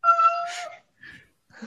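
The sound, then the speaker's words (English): A cat named Patchy lets out a long, wavering meow followed by two shorter, fainter cries, with no talking over them. “Crying kitty.”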